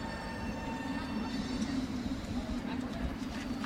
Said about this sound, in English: And oh no, he's getting onto a tram.